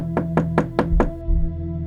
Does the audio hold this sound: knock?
yes